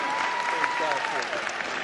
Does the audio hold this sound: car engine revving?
no